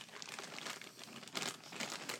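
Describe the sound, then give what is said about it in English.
A standard mixed-nut mix with cashews being poured from a bag onto a plate: a steady, crackly rustle of the crinkling bag with scattered small clatters, lasting about two seconds with a few louder bursts and no talking. “I'm just sort of pouring this onto a plate.”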